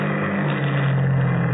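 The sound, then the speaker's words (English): A car engine hums steadily, a low, even rumble with a slight settling toward the end as the vehicle comes to a halt. No one speaks. “Why are we stopping?”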